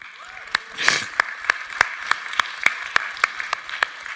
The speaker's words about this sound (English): How about a round of applause for the worship?